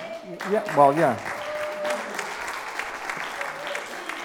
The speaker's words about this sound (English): It's cheap applause. I'll take it any way I can get it.